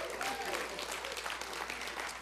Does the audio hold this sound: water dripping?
no